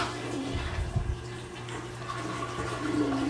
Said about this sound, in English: Did you guys hear that? That was a flush.